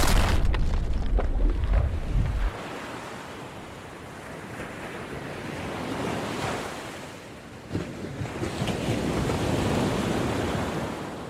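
Ocean surf rolls and crashes ashore in loud, broad washes of sound that swell and recede, with a deep rumble at the start and a steady windy hiss throughout. No one speaks.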